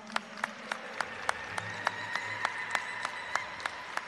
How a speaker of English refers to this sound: I just wanted to say thank you to Manny and to All Nations Drum and to our Southern Express Drum for being here this evening. Can we get an applause for all of them?